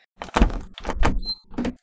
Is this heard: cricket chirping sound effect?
no